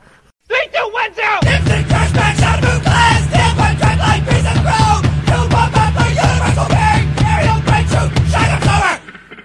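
A person yells loudly and almost continuously for about eight seconds, strained, over a steady pulsing low rhythmic backing that starts shortly after the yelling begins.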